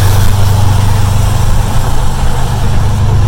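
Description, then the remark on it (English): A car's engine drones steadily and loudly during a drive in the rain, with a deep rumbling tone and a broad wash of road noise over it and no pauses. “But you know, considering the rain, it's been a smooth drive so far.”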